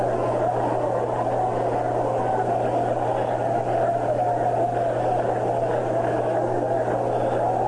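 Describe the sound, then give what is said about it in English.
A stadium crowd stirs for batter Richie Allen with a steady, even roar of many voices that holds at a constant level throughout, with a low hum running underneath and no distinct cheers or claps. “The noise in the background you heard wasn't for Russ's magnificent reading of that commercial. It was for Richie Allen.”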